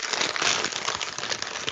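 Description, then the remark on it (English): A chip bag crinkles and crackles steadily without pause right into the microphone while chips are eaten during a taste test, a dense, bright rustle of plastic being handled, fairly loud and with no voices over it. “I'm just sitting here crackling like right into the microphone.”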